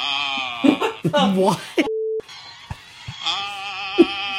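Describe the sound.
A short, steady telephone tone sounds through a speakerphone as a phone call is being made, set among bursts of voices and a bright, buzzy electronic drone that fills the rest of the moment.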